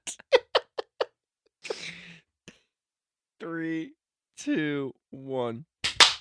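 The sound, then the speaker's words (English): Five or so sharp hand claps by the hosts, clapping their hands together, land in an uneven, ragged rhythm, followed by a breathy burst and several high, squeaky vocal sounds with no clear words. “We don't need to clap again.”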